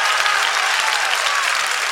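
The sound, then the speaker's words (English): A crowd claps steadily and densely, a continuous wash of many hands at a fairly loud, even level with no pauses and no talking. “Somebody clap those hands and give him a shout of praise in this house.”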